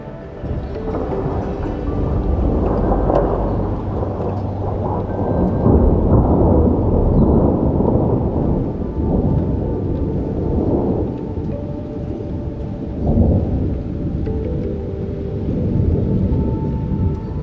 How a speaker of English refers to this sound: Burst of rain drums rhythmically against the roof, while the thunder gently grumbles again.